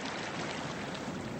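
A steady, dense roar of rushing water, loud and continuous with no pauses, as muddy Mississippi River water pours through fully open floodgates at 8,000 cubic feet per second.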